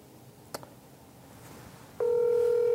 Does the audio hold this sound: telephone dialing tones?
yes